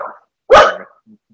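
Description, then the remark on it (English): A single loud, sharp dog bark, preceded by a brief softer sound and followed by quiet. “Dog has just eaten my flatmate.”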